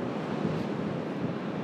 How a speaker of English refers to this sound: It's dry, it's cloudy above, little flecks of blue. Nothing significant. Hardy people out there in the sea, and the tide is coming in.